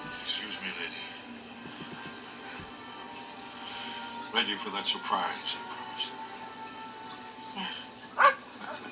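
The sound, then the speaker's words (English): A dog barks and yips a few times in short bursts, with a sharper bark near the end, over a continuous background of voices and room noise. “Got the dog back.”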